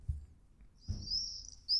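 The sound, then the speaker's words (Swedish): Birds chirp in a high, thin, continuous trill that starts partway through and keeps going, with a couple of low thumps and a soft rumble underneath. “Fåglar. Mm. Det är det somrigaste djuret.”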